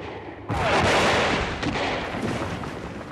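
A sudden loud burst of battle noise kicks in after a brief quiet moment, a dense roar of explosions and gunfire that stays heavy and continuous, with sharp cracks and rumbling booms layered throughout: airships firing large guns at the Green Warriors, who fire back with rifles.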